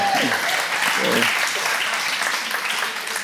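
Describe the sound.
An audience claps steadily, a dense wash of many hands applauding at an even loudness throughout, with brief voices and a faint cheer mixed in near the start.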